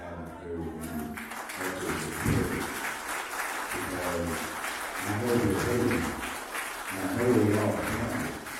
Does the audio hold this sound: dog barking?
no